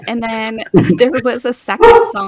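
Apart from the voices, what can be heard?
dog barking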